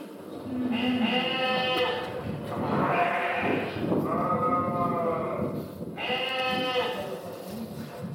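Sheep bleat loudly, several long wavering calls in a row, one overlapping another, with a faint low rumble in the background and no talking.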